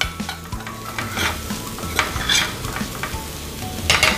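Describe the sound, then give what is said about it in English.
Rice sizzles steadily in a hot pan as it is stir-fried while a utensil scrapes and stirs, with repeated tossing motions creating bursts of crackle and a low, rumbling churn underneath. “Give it a quick toss. Get that all incorporated, like that.”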